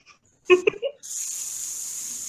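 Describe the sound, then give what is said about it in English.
A cold shower starts running, a steady, bright hiss of spraying water that holds evenly to the end, just after a brief voice exclamation. “That's the shower, by the way.”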